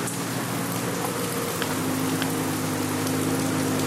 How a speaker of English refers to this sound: I'm at the Residence Inn in Providence, Rhode Island. It's raining pretty hard right now.